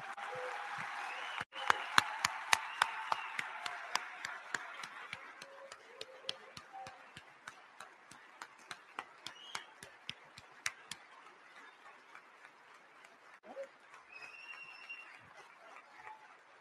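audience round of applause

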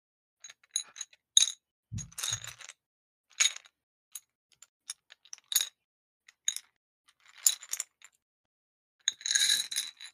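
dice clinking

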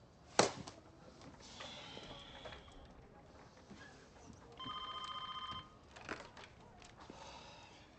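telephone ringing

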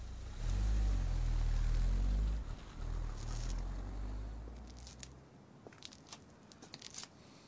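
car driving away

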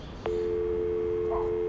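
telephone busy signal

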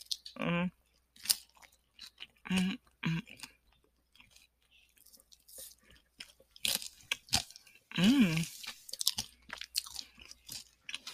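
chewing food

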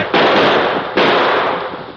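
gunshot sound effect

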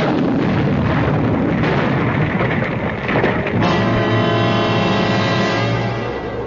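loud explosion

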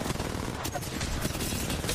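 video game gunfire

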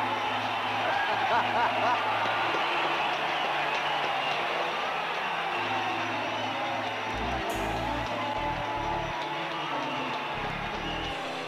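baseball crowd cheering

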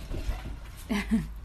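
dog

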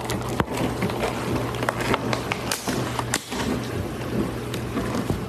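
tap water running

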